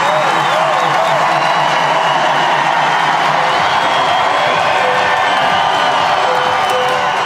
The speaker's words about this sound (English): And when she returns, this is the reaction she gets when she takes the court. A standing ovation. Ladies and gentlemen, please welcome the number one player in the world, Serena Williams! About a minute into this, the cheers only get louder.